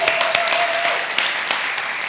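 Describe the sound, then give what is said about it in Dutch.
A crowd applauds steadily, a dense wash of many hands clapping with a few sharper claps standing out, sustained at a fairly loud level throughout. The applause is for a man celebrating his 40th birthday. “Laten we een applaus geven.”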